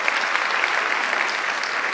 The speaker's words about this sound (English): They are here in the house this evening. I would love to give them a round of applause and recognition for this.